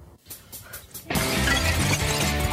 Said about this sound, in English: And I'm going to smash my own breakaway window. Let's see how people react.